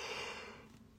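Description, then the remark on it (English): A person yawns once, a soft, breathy airy exhale that fades out over about a second, fairly quiet, with no talking. “Oh, God, stop yawning.”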